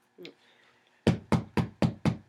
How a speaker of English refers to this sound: Whoa, what the fuck is that? Oh, man. There's someone outside the baby's room. That's fucking creepy. Isn't this right around the time there was, like, knocks at the door? Yeah. That's what that was, man.